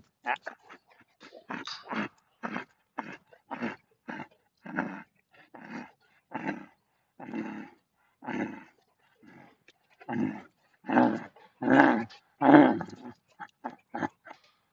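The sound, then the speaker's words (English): A young female dog, a teenager and no longer a puppy, whimpers and growls playfully, a rapid series of short grumbling bursts that grow louder and more insistent toward the end, with no one talking. “Yeah, you're definitely a full teenager now. You're not a puppy anymore.”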